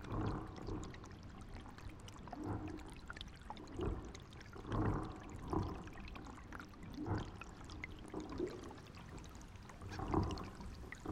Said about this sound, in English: The underwater sounds that were coming from the lock, you could hear all of these bottles and tires swirling under the water somewhere deep, and you could hear all these bottles tinkling away.